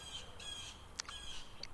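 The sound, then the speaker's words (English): A harsh, screechy bird call repeats in short rasping bursts, with a sharp squawk in the middle and a quieter chirp near the end; no voices are heard. “And what was this screamy bird over there?”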